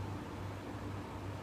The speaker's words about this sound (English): the very gentle hum of the projector,